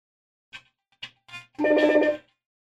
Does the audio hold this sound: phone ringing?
yes